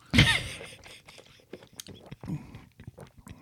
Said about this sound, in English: It's fizzy. It's orange. It tastes very vaguely of raspberry. Give me a little sip of it. I'll soon tell you.